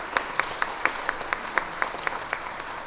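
Steady, evenly spaced clapping, roughly four claps a second at a moderate level, with no voices over it, like an audience applauding in a loose shared rhythm.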